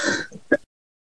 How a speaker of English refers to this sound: Sorry, no, I had to cough.